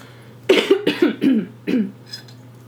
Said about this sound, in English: I have candle issues and coughing like a crazy person.